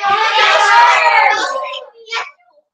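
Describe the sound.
A crowd of voices shouts out at once in a loud, overlapping burst for about a second and a half, then trails off into a few scattered, fading calls.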